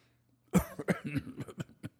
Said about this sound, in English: No, I don't have a cold, just a little cough. Just a little bit of the, oh no, it's sinuses, it's not a cold.